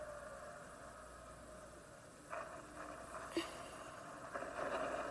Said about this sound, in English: Here are the cars. They're starting the engines.